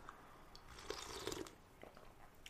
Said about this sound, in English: Let me get this first sip in me here.